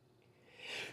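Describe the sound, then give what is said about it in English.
A single sneeze: a soft breathy intake, then a sudden loud, hissy burst of air near the end. No one speaks. “Bless you. Sorry.”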